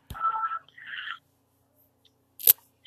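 Two short electronic telephone dialing tones beep in quick succession, each at a different pitch, followed after a pause by a sharp click and a faint blip. No one speaks.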